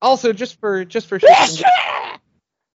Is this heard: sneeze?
yes